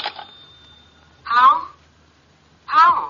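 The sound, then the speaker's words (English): A telephone rings twice in short, trilling bursts about a second and a half apart, fairly loud, with a faint steady tone lingering at the start. “Excuse me, the phone.”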